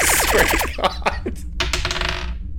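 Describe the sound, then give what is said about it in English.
Dice clatter across a hard table: a fast burst of sharp clicks and rattles that slows into a few scattered taps as they settle, fairly loud with no talking. “Hey, this dice isn't trying to fuck me today.”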